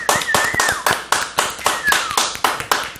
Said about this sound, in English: So round of applause.